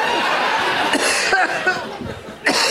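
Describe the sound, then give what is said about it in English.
Several harsh coughs burst out in an irregular run, sputtering and breathy between them, with one last sharp cough near the end. “I don't know why I'm coughing suddenly.”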